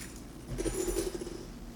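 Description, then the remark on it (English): A short, soft metallic jingle of keys being taken off, a light clinking rattle that swells for about a second and then fades, with no voices present. “I'm going to take my keys off, and I'm worried it's going to be loud.”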